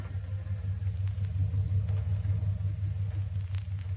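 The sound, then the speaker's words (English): A lawyer's car idles at the front door of a suburban estate with a steady, low rumbling hum that holds evenly for several seconds, with faint light clicks and rattles over it and no one speaking. “At the front door, Mrs. Lancaster is just getting out of her lawyer's car.”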